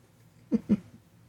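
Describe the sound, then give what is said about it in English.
A dog that has found a squeaky toy lets out two short squeaky whimpers in quick succession to get attention, fairly low-pitched and moderately loud, with quiet background otherwise and no one talking. “No, he just sits there and he just fucking squeaks at it because he wants attention.”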